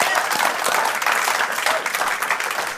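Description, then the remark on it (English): An audience at a Sunday church service claps together to honor the Holy Spirit, in sustained, dense applause, many hands striking at once in a steady, loud wash of sharp clicks with no pauses throughout. “And then, man, also, I think maybe even, I hate to make you clap again, but maybe even a bigger hand clap.”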